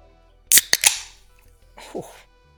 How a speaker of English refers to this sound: That beer sound was pretty classy.